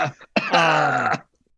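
A brief, rough cough from a non-smoker coughing up smoke, followed by a strained, drawn-out vocal groan lasting under a second before it cuts off into silence.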